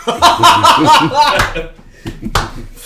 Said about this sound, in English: Yeah, that's a slow clap. Bravo. Bravo.